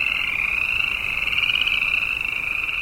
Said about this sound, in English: The road through southern Yellowstone goes higher. Winter's just breaking up. We pass pools of frogs telling everybody hibernation is over.